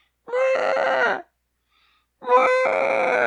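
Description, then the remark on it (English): A voice lets out two shrill, strained screams, each about a second long, with a short silent gap between them, imitating a screaming carrot. “I like them when they scream.”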